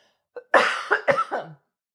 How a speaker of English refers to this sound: Well, maybe that's, hold on, I have to cough.